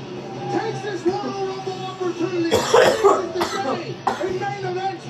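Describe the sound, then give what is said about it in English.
Several harsh coughs burst out in quick succession, the first and loudest followed by a couple of shorter hacks, over a steady murmur of voices in the background. “I'm still coughing.”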